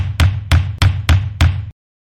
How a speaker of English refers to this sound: The clock has run out. The buzzer is sounding.